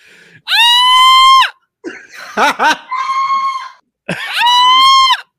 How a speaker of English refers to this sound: Let's roll it. The scream is the best part.